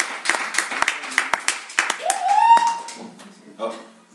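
An audience applauds with brisk, scattered clapping, joined midway by a rising whoop or whistle, then the applause thins and fades toward the end.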